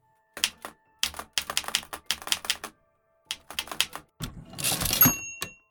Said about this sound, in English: Later, he took a sheet of paper and used the old brother typewriter in his office to hammer out a will for Kathleen.